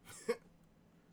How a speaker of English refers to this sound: Someone sneezed. Yeah, I heard that, too.